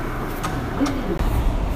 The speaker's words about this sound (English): Okay, so I'm on the train, and I found a spot towards the end of one of the cars, and so I feel like I can talk, and there's a couple sort of nearby, and they're talking